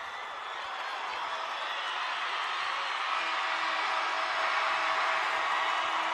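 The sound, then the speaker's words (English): A basketball crowd stands and applauds at the end of the Lincoln Lynx 52-41 win over Bellevue East: steady, dense clapping mixed with cheering voices, holding at a strong, even level for about six seconds with no announcer talking. “The crowd stands and applauds.”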